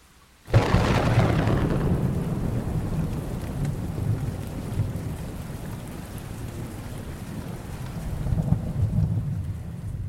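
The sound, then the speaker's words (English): Heavy rain pours down steadily at night as a deep thunder rumble breaks in abruptly and rolls on, a second swell of thunder growing near the end; no voices, just the storm. “describe the night as one of impenetrable darkness with rain pouring down in torrents.”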